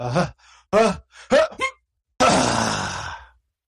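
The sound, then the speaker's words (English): A voice imitates how an acquaintance half sneezes: a few short, breathy vocal catches building up, then one loud, hissing, airy burst that trails off gradually without a full sneeze. “I knew somebody for a long time who didn't sneeze so much as half sneeze.”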